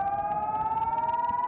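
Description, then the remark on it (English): A loud, sustained air raid siren wails on a steady, slowly rising tone with strong harmonics, sounding alone without any voices over it; a rocket warning siren in Israel, set off by the Iron Dome defense system when rockets are incoming. “First, initiating a siren in the area, then launching a rocket that flies directly towards the incoming missile and detonates when it's near it.”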